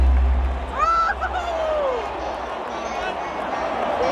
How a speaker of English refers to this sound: With the crowd noise, we should be okay.